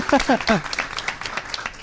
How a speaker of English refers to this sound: So let's go ahead and I want to start off with thanking our sponsors, Dell Technologies, Render, NVIDIA, and Tool Farm. Woo, so big hand of applause for, yeah, a round of applause, yeah. Thank you.